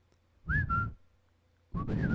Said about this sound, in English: Look at you trying to whistle and laugh. Can you whistle and laugh? No.